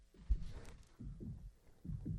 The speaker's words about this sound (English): What is this? Oh, it's like a heartbeat. I wonder what that heartbeat is.